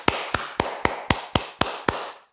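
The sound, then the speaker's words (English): Eight sharp hand claps in a steady, even rhythm, each a crisp bright smack with a short ringing tail, fairly loud and with no talking. “I'm going to hand clap myself right now.”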